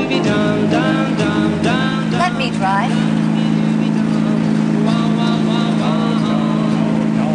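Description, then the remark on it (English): A car engine hums low and steady throughout as the vehicle, a car with a clutch, drives off, with voices talking over it during the first few seconds. “Takes a lot of strength to depress this clutch. This car can get away from you.”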